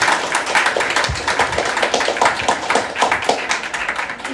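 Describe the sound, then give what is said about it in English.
An audience claps steadily in thanks to a guest priest, a dense patter of many hands with crisp, bright slaps that holds at an even level throughout, with no voices breaking through. “Unless you have to go, he has a story he wants to tell you, but you clap for him one more time to show you want it.”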